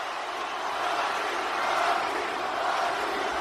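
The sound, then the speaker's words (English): A wrestling crowd chants for The Rock in a dense, continuous roar of many voices, steady throughout and swelling slightly toward the middle before holding level. No single voice stands out. “Hear the crowd chanting for The Rock.”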